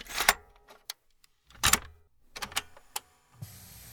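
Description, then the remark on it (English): Inside a car, a series of sharp clunks and rattles like keys and door handling, ending in a steady mechanical whirr like a power window. No one speaks. “This is the first ever Curious Podcast recorded in a car.”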